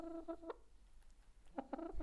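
Domestic hens cluck in two short bursts of quick, tonal notes separated by a brief pause, moderately loud over a quiet outdoor background with no talking.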